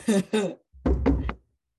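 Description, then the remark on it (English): Knocking on wood: two quick raps, a short pause, then three more in a row. The knocks are fairly loud, with a hollow, thumping tone and no talking. “Knock on wood.”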